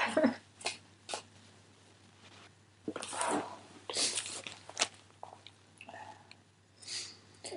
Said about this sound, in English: And I know at the moment it probably won't seem like that, but I need to blow my nose now.